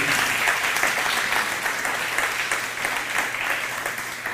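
A room full of people claps steadily, a dense continuous patter of many hands filling the space for several seconds at a fairly loud, even level.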